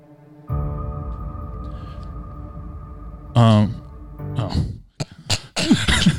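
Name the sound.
coughing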